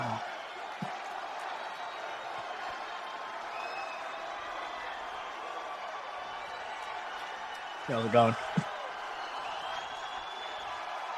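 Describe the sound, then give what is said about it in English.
A wrestling arena crowd cheers in a steady, roaring wash of noise that never lets up, not stopping long enough to let a man talk, while he briefly speaks a short line over it. “This crowd really did. They want to stop cheering long enough to let the man talk.”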